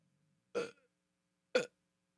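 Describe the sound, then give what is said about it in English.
Two short, abrupt burps about a second apart, each a brief voiced gulp of air, with near silence around them and no talking. “Sorry, I burped.”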